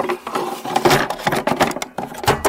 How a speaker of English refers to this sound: So that is the sound... of a Nintendo cartridge going into a Nintendo.